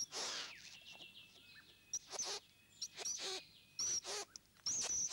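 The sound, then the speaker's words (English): A male great bowerbird calls at his bower in a series of loud, harsh rasping bursts mixed with brief whistled notes, broken by short pauses, with no talking. “When a female comes to his bower, the male uses many ploys to impress her, even enhancing his presence by displaying his ornaments.”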